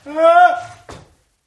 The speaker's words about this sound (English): Did you knock? Huh? You knocked on the door after I walked in.